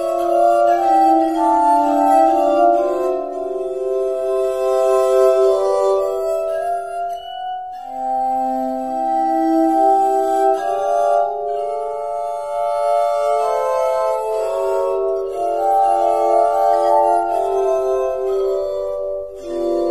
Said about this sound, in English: So, yeah, it's just like playing wine glasses, but it's the glasses that are rotating, so your fingers get to stay in the same spot. You know, it's kind of like playing wine glasses as you would play a piano almost.